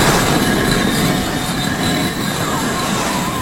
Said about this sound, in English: Oh my goodness! That is amazing! How'd you get the bricks to slide about like that?